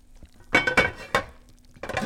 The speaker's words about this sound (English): That bowl will do. Okay, the boiling water is going over the noodles.